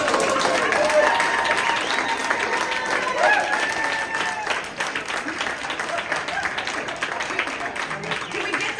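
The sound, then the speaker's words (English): At a CD4 candidates' debate, the audience cheers and applauds after six candidates, including Lauren Boebert and another candidate, raised their hands when asked if they had been arrested. Loud whoops and shouting voices ride over dense, steady clapping for the first few seconds, then the applause carries on, thick and continuous, to the end. “They then proceeded to cheer and high-five each other.”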